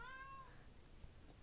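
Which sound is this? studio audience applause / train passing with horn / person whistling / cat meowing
cat meowing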